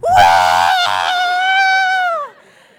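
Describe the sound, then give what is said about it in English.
A cheering section of more than two people lets out a loud, high-pitched scream as a student's name is called to cross the stage; it holds steady for about two seconds before abruptly cutting off. No words are spoken. “So there's a whole cheering section that pops up.”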